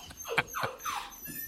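A few quick, high-pitched dog whines and yips follow one another in a short burst, fairly faint, with no talking over them.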